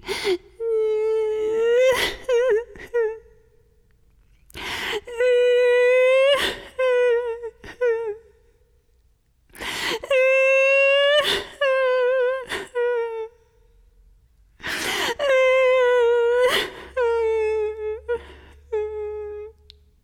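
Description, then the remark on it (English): A storyteller's voice imitates Little River Turtle crying in the shade of a large rock: four bouts of high, wavering wails and whimpers broken by sharp sobbing breaths, loud and alone with short pauses between each bout. “And there, River Turtle began to cry.”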